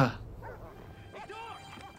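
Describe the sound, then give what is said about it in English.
A dog barks sharply once, then lets out a quick run of higher-pitched yips and barks over a low, steady background hum. “That guy really does not like dogs.”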